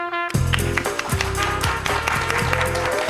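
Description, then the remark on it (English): A live audience at Pike Nursery in Milton claps steadily and loudly for about three seconds early in the morning during the Green and Growing show on 95.5 WSB, a dense wash of hand claps layered over a musical jingle with thumping low bass notes. “That is a lively crowd, ladies and gentlemen, that woke up early this morning to be with us at Pike Nursery in Milton.”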